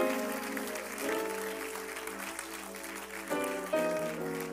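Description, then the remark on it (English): A crowd claps its hands to the Lord steadily together, the dense patter of many hands blending with sustained music playing underneath throughout. “Come on, clap your hands to the Lord if you believe God is good.”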